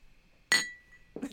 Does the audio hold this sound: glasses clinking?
yes